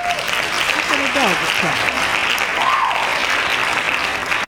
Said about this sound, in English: Give Pepper a round of applause, please.